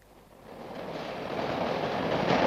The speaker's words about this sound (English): This is nice, this subway. It's underground or elevated as the mood takes it, old-fashioned, though the cars have been modernized. Built 60 years ago and paid its cost in 40 years.